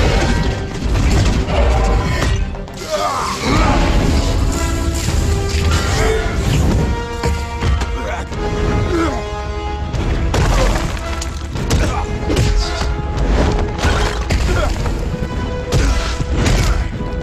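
A big explosion booms and keeps rumbling, with crashes and heavy thuds layered into a loud, dense roar that lasts the whole stretch, backed by dramatic music.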